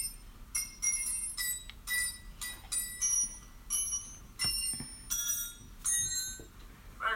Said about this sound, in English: So that was Jingle Bells on some wrenches, everybody. Oh my gosh, on some wrenches, really? Yes. That's when you said wrenches. I'm like, huh? Yes. Mechanical wrenches. Some open and closed wrenches.